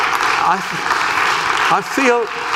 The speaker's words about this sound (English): Could you give him a round of applause for doing that?